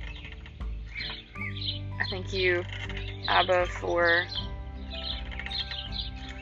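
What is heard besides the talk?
small birds chirping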